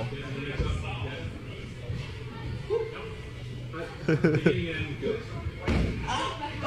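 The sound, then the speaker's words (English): A heavy, dull slam of a body landing hard on a mat, followed later by another thump, with muffled voices and a pained vocal sound in between. “Knocked the wind out of you.”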